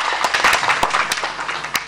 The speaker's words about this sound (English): We have Ken Ashigbe. He's the CEO of the Telecom Chamber. A round of applause to him, please.